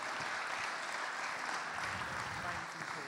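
An audience gives a big round of applause for a man called forward to receive a present, clapping steadily for about three seconds, a dense, even wash of many hands with no break in the sound and a few indistinct voices mixed into the applause.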